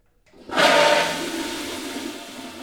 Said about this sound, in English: Just then, they heard the toilet flush down the hall.